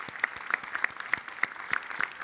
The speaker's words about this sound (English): And they rose to the challenge above and beyond. They did a great job, so give them a round of applause.